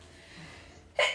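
After a quiet stretch of faint background hiss, a single sharp sneeze bursts out near the end, loud and brief.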